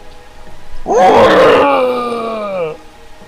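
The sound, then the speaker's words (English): A person imitates the roar of a hungry brown bear lifting its head from its gory meal: one loud, growling bellow lasting about two seconds, rough and harmonic, starting with a raspy burst and then holding a steady, slowly falling tone before cutting off. “The hungry brown bear lifts its head up from its gory meal and roars.”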